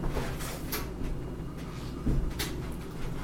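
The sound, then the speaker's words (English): An oven door being opened while cookies bake: a few soft clunks and a brief scraping slide, moderately faint, with no one speaking. “So don't feel the need to open the oven door and check on them until you can actually smell them.”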